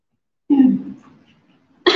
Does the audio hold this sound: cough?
yes